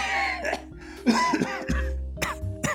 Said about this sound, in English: But then he had to put his fist to his mouth as a new spell of coughing racked him.